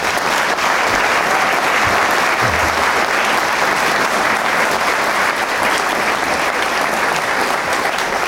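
Sustained, loud applause from a large audience, a dense steady wash of clapping hands filling the room for several seconds without any speech.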